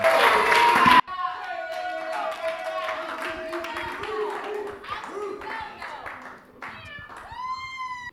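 A church audience on a Sunday gives a loud, dense burst of applause welcoming a speaker, lasting about a second, then giving way to high, wavering, sliding vocal sounds like cheering that continue to the end.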